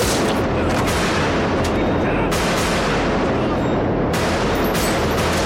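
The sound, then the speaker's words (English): Loud, relentless gunfire from a Michael Mann film sequence, custom-made rather than stock gun sounds, echoing in a tunnel: rapid overlapping shots blur into a continuous booming roar, with sharper bursts cutting through every second or so. “Great gun sound work in the tunnel.”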